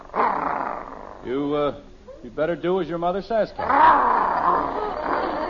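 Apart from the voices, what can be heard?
dog growling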